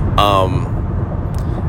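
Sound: car driving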